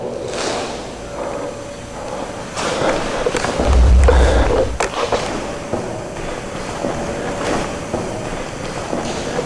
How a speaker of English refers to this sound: There are footsteps in this room right now.